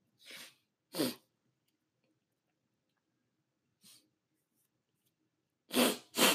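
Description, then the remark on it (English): A person blows their nose in several loud, breathy bursts: two near the start, a faint one midway, and two strong final honks, with silence between and no talking. “I'm sorry, I'm blowing my nose.”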